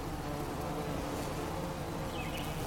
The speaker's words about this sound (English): And I thought it appropriate to have the sound of nature, the sound of all different species of bees and bug working together on this field of gorgeous smelling flowers.